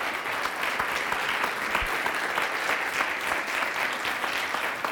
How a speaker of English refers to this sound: Give God a hand clap. Give it loud. Get it up here.